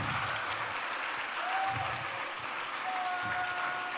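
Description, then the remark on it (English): Steady applause from an audience for couples married longer than five years, a dense wash of many hands clapping at an even loudness throughout, with a few faint whistles rising above it. “All right, let's clap for these guys now.”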